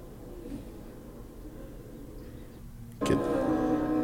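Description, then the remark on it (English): A small 1960s racing motorcycle engine idles at around 6,000 RPM with a low, steady burble, then abruptly revs up loud and sharp near the end. Its high-pitched whine is harsh. “Oh, look how little the bike is with the guy on it, too. Yeah, this was in like the 60s that they raced these.”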